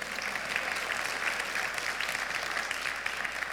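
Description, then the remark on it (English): A church audience applauding steadily for a few seconds during a Mother's Day service, a dense, even wash of many hands clapping at once, fairly loud and sustained without breaks, with no voices rising above it. “Now, that's probably all the clapping you're going to do, because today's topic is this question.”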